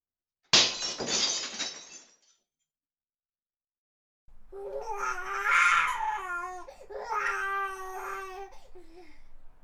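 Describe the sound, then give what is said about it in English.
Glass smashes with a sudden loud crash that rings and tinkles off for about a second and a half; after a short silence, a baby starts crying in long wailing bursts. “So we just heard, what is this, glass breaking, smoke alarm, dog barking, baby crying.”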